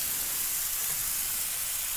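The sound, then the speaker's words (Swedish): A steady, bright hiss of leftover wine sizzling in a hot frying pan with cheese and zucchini, continuous, with a broad crackling wash and no talking. “Och fräser till så där ljuvligt.”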